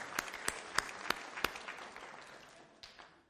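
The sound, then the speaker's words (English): A church audience applauds, with a steady wash of clapping and a few sharp, louder claps standing out at the start, then the applause gradually thins and fades. “Yeah, let's clap for that.”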